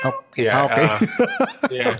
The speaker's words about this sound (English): Okay. He can hear Ubi. Okay. Takot lang. Sorry about that. That cat sounds like a child.